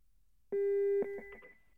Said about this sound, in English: Yeah, that's not good. That's some echoing.